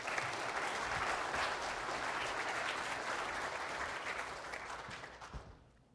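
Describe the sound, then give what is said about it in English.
Steady audience applause as a guest speaker comes up, a dense crackle of many hands clapping at an even level for about five seconds before tapering off and fading out at the end. “So why don't you guys give Kelly a round of applause as she comes on up.”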